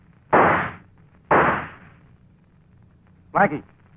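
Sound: gunshot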